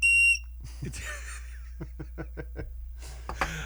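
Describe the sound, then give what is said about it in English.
A water bird whistle, its water long since evaporated, gives one short, loud, steady blast, shrill and train-like, then stops. Breathy chuckles and laughter follow. “I was attempting to use the cool bird whistle that Brian got me, but it requires water inside”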